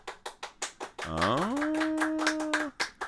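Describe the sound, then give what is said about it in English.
An audience claps for Alcatraz in quick steady rhythm while one voice lets out a long, loud, rising hoot that holds for over a second before the clapping carries on alone. “Now, what kind of applause do we get for Alcatraz?”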